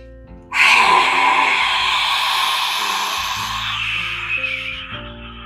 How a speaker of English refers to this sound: You're going to breathe out, and as you breathe out, you're going to stick your tongue out as far as you can and make a loud ha roaring sound. That's why we call it lion's breath.